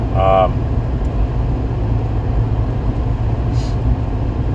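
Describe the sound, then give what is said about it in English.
Steady, loud low rumble of a truck engine and road noise heard from inside the cab as the truck is driven, pulling slightly to the left, droning evenly throughout, with a brief higher tonal squeak at the very start. “Truck's pulling to the left a little bit.”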